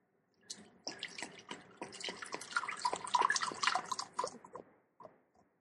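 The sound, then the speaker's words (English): Whiskey being poured slowly into a glass, a steady glugging trickle lasting about four seconds before tapering off to a few last drips. No voices. “A slow pour.”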